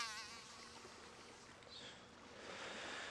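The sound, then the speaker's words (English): A dense swarm of flies and wasps buzzing steadily, many overlapping drones with shifting pitch, continuous and fairly loud with no voices. “Attracted to the sweetness of the milk and honey, swarms of wasps, flies, and any other kind of insect you could imagine would swarm onto the victim, biting and stinging over and over again.”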